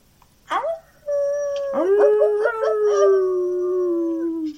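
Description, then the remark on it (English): A dog howls: a short sharp yelp, then a long, loud, sustained howl with a wavering tone that slowly sinks in pitch before trailing off. “Kitty doesn't like puppies.”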